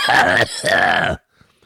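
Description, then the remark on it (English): Two loud, harsh coughs in quick succession from someone smoking weed, each drawn out with a raspy, throaty, almost growling tone, followed by silence. “I'm not dying. I just had to cough.”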